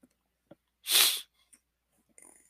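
A person with troubled sinuses tries to sneeze, letting out one short, forceful, hissing burst of breath, followed by faint sniffs and breathy noises. No talking.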